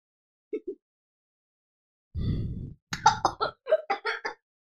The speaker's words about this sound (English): Oh, the scotch made me cough. Just a little bit.